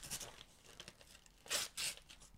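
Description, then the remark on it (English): Wrapping paper being torn open on a gift, with crinkly rustling throughout and two loud, sharp ripping bursts near the end. “Is that Christmas wrapping paper when you wrap something up in lips and you give it to your family?”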